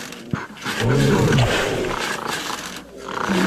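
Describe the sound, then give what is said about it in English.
Big cats at a zoo roar while mating, recorded on a phone held up toward them: deep, drawn-out bursts, rough guttural calls rising and falling over a few seconds with a steady noisy background. “let me just hold the phone up real quick to the, they're doing it right now.”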